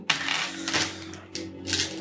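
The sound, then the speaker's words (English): Several dice clatter and rattle across a hard Easy Roller Dice Company dice tray in bright, clicky bursts during a close combat roll in a tabletop game, with a couple of separate tumbling rolls and a steady low hum underneath. “Throw them into the Easy Roller Dice Company tray.”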